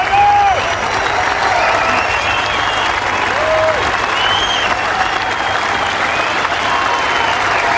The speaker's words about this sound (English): Well, that ovation went on for about 2 minutes yesterday. That's Tiger Woods walking over that landmark bridge at St. Andrews at 18.